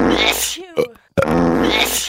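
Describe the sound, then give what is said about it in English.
A voice imitates a fart, a sneeze and a burp in quick succession: a long raspy blast, a short sharp burst, a brief pause, then another drawn-out buzzing noise, all loud. “My favourite was fart sneeze, burp, fart sneeze.”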